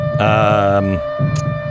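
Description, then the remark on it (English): An air raid siren drones loudly on a steady, sustained pitch, with a brighter, harsher surge of tone early on before it settles back into a constant hum. “See, the air sirens have gone on.”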